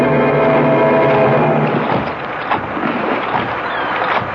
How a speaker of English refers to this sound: The boat is sinking